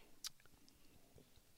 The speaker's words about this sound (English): Let me just sip my wine.